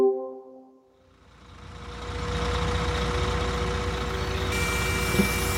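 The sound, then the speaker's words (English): A bus's engine rumbles steadily after a brief electronic warning tone at the start, building into a loud, continuous idle with no voices, as a passenger gets off the bus in Crackington Haven, North Cornwall. “I've just got off the bus in Crackington Haven and it is beautiful.”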